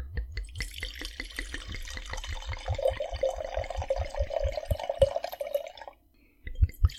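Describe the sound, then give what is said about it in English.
Wine glugs steadily from a bottle into a glass, the splashing pitch rising as it fills, then the pour stops abruptly followed by a couple of soft knocks. “Let's pour this.”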